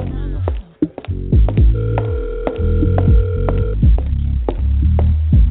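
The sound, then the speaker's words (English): A telephone ring heard down a narrow phone line, a steady electronic tone repeating over a low murky background of muffled thumps and hum. “Pick up the phone, bitch.”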